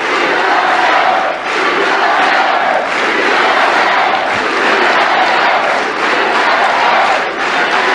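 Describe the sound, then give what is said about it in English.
A large rally crowd cheers and shouts continuously, a dense, loud roar of many voices with chants and yells rising and falling throughout, no single speaker standing out. “Listen to the crowd.”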